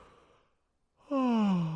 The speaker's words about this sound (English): Oh, good yawn.